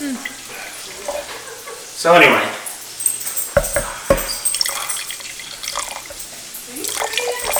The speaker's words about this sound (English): Here, your glass is empty. I will pour you more.